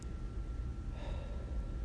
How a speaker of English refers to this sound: I just have my cover over now, and it feels like I'm in like a soundproof room or like an acoustic room. Can you hear everything? Watch, listen to me breathing.